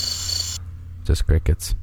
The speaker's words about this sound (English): Just crickets.